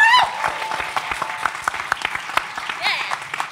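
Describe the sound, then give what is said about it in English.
The audience of a live show claps for itself steadily, a dense wash of many hands with sharp irregular slaps, while a few faint calls and whoops rise over the applause. “So I would like you all to give yourselves a big round of applause.”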